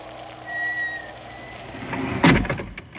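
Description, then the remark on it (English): A heavy door in a house swings shut with a single solid thud partway through, ringing briefly after a stretch of low ambient hum and a faint thin whistle. “The door closed.”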